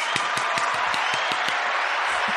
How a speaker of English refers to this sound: Yeah! Clap it up. All right, applause for that.